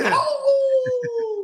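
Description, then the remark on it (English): A person imitates a wolf howl: a single long, loud, sustained tone that swoops up at the start, then slowly slides lower with a few soft pulsing sounds underneath. “He becomes the Tequila Wolf.”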